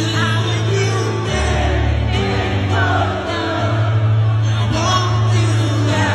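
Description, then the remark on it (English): A large concert crowd in Detroit sings along in a loud, continuous roar of many voices during a Saturday night concert tribute to a late rock singer, carried over steady band music with a sustained low bass tone for the whole stretch. “You can hear the whole crowd singing along,”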